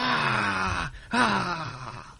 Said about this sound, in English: I should just isolate the Nicolas Cage scream.